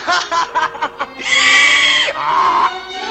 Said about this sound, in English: What's he think I look like? A jackass? You sure do! Hey, you laugh like a donkey.